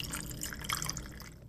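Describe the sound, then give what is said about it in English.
Vodka pouring steadily into two iced glasses, a continuous splashing trickle with faint clinks and crackles over ice, lasting about a second and a half with no talking. “I'll pour over 2 iced glasses.”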